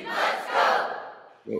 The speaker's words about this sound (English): Anybody hearing some? That messed with me. That's, all right. That's a sleeper app cheering him on to make his pick.